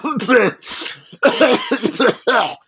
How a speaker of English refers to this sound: I'm sorry. I just had to. I had a coughing fit, and I had to fake a coughing fit to keep myself from barfing by bringing up the MST3K revival.